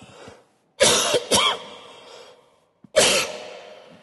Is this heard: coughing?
yes